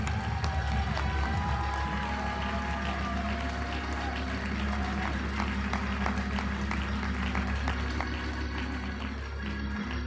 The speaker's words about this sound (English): If you really believe that God heard you and God is going to accomplish his word, I want you to clap your hands as loud as you have on service with faith and expectancy.